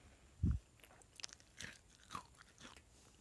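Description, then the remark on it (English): The speaker's sister munches crackers with a few quiet, crisp crunches spaced irregularly after a dull low thump, the chewing soft, with no talking. “So, there, that's my sister, and she's still eating her crackers, what the fuck?”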